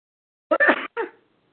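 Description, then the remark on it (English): A single sharp sneeze in two quick parts, a breathy burst followed by a shorter explosive release, fairly loud against silence with no talking. “God bless you.”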